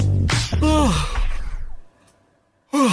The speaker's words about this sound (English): I bet someone else yawned then.